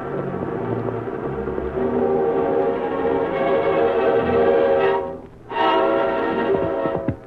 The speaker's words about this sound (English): Hear that, Silver? It's the cattle. We're up ahead of them.